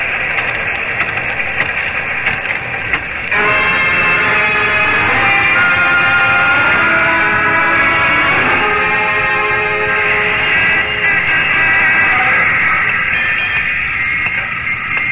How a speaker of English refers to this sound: A freight train neared Plattsville. Boxcar door slid open, and a gaunt-looking young man in shabby but well-cut clothes leapt from the speeding car.